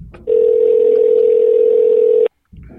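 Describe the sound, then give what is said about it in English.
A phone's ringback tone on an outgoing call: one steady, loud electronic tone holds for about two seconds, then cuts off into a brief silence. There is no talking. “You hear it ringing? I'm calling him now.”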